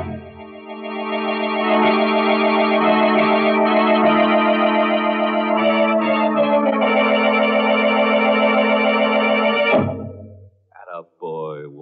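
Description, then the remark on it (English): A loud, blaring prison alarm siren, sounding because a prisoner has broken out, holds a steady, buzzing harmonic tone for about ten seconds, then winds down with a falling pitch, followed by a brief voice. “But instead of listening to that alarm, you should have paid more attention to that wife of yours. Because that siren is cooking up something that'll be a real scream.”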